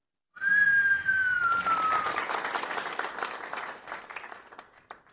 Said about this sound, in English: Giving y'all a big cheer.